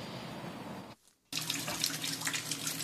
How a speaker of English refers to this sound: Videos sent to Fox 5 shows water pouring out of pipes